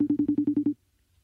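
faceTime video call ringing

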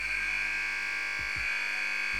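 air horn blast

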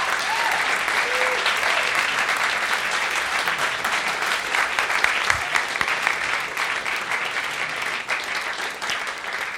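concert audience applause

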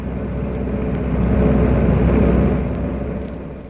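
car driving past

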